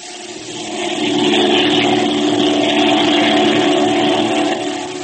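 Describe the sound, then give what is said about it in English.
A propeller airplane engine drones steadily and loudly, a thick rumbling hum that swells in over the first second, holds, and eases off slightly at the end. No voices. “I'm ready to go to the plane now.”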